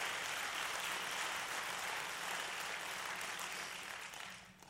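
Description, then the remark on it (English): A large crowd claps together to give Jesus thanks, a steady, dense wash of applause that holds strong for several seconds before thinning out at the end. No one speaks over it. “Come on, let's clap like we mean it.”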